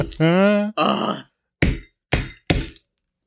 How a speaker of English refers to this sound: And now I'm about to hit this apple with a hammer.